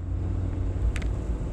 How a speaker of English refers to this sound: Like, this car literally just, I don't think he paid attention at all, but like, I was coming out and it's green, so I have the right of way first. This guy just turns right in front of me and I had to like hit this brake